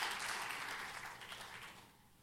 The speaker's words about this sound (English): And everybody said, amen. Give the Lord a good hand clap of praise as you're being seated today.